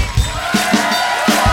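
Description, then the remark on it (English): A large concert crowd of rock and rollers at a guitarist tribute to a musician show roars with dense, overlapping yelling and screaming, loud and sustained throughout, with a few stronger bursts rising out of the noise. “Now we're gonna need some yelling and screaming.”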